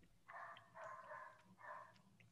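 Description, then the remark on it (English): A stray dog in the Philippines barks three times in quick succession, drawn-out, somewhat yelping barks, fairly faint against a quiet background. “Is that your dog, Jay?”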